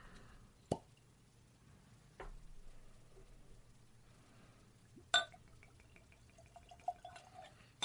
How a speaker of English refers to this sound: God fucking shit. What is wrong with me? I mean, I'm losing my eyesight. I can't pour for shit. I mean, I don't even have anything I can wipe that up with.